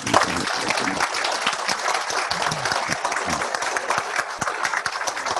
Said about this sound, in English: Please, round of applause for Monsignor.